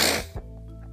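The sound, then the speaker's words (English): A single short nasal sniffle from a person with allergies and a stuffed-up nose, a quick hissing rush of air through the nose lasting about a third of a second, followed by quiet background hum with no talking. “So, and again, everybody, excuse my sniffles.”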